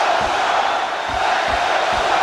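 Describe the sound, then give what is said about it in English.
A large home crowd at an NHL hockey game chants loudly in unison for their team, a dense roar of voices with rhythmic low thumps pulsing underneath at a steady beat throughout. “But the chant of the home crowd is for their team.”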